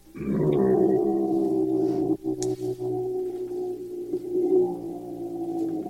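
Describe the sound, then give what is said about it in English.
A man performs Tibetan deep-voice chanting, a steady, very low, rumbling drone rich in overtones, held for several seconds with a brief catch of breath partway through before resuming. “Okay, that was a Tibetan deep voice and a great way to clear my throat, too.”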